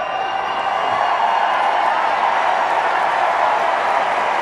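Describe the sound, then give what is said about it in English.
A large tennis crowd applauds and cheers steadily throughout after a player wins a match lasting 2 hours and 27 minutes, a dense, continuous wash of clapping and whooping with no letup. “I think the crowd have given you a pretty good idea of how much they loved your performance tonight.”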